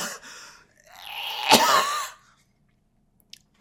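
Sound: coughing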